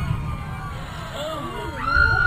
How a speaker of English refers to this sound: Wait! Wait, they're screaming, come from down the street. The crowd is surging, panicking.